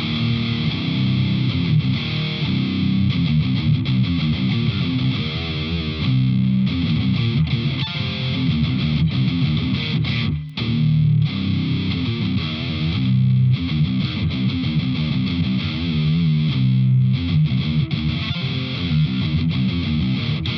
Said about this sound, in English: Now we're going to blend the IRs. Here's the Ingle Savage 120 Channel 2